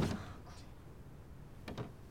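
A door opens with a soft thud at the start, a quiet pause, then two sharp latch-like clicks close together near the end. Fairly close and not loud, with no voices.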